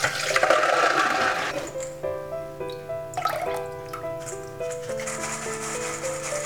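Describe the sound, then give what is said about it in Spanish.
A steady rush of water pours and drains for a couple of seconds as water is drained off tiger nuts that were soaking in a bowl, then fades into light trickling beneath sustained background music. “Ahora tenemos que escurrir las chufas y secarlas. Escurrimos el agua.”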